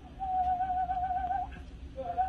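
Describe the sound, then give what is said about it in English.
Someone whistles to demonstrate vibrato, a long, steady note that wavers slightly as it ends, then after a short pause starts a second, lower note, over a low background rumble. “So if I were to go... putting the whistle down.”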